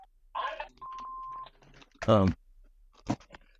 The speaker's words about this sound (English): and my phone ringing here. No, I'm just, let me just.